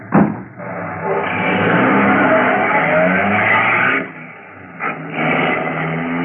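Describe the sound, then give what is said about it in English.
A taxi cab's engine starts with a sharp jolt, then revs loudly and roars away, the engine noise dropping briefly before another burst of acceleration. “Get into the cab and start it.”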